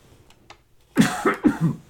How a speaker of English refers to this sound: Yeah, I'm coughing. Thought I had that problem solved for the day.